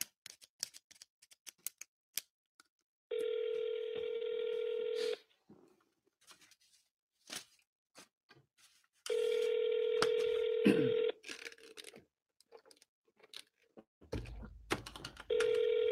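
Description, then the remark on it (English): Phone call tones sound in long, steady bursts of about two seconds, separated by pauses, with light tapping clicks scattered in between, as a call is tried again. No one speaks. “Let me try a call again.”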